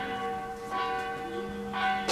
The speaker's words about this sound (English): Once these bells stop, I will finish. They may never stop.